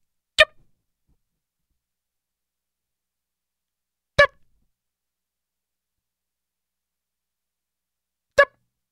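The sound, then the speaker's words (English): A smoke detector's low-battery beep: three short, sharp electronic chirps spaced roughly four seconds apart, each one identical and bright, with silence in between. “Who doesn't change the battery in their smoke detector?”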